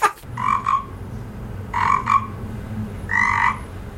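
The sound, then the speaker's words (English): A frog croaking sound effect: three loud frog croaks, each a short double-pulsed ribbit, spaced about a second and a half apart with no voices. “Hello, it's Fact Frog here. We couldn't afford Fact Dragon.”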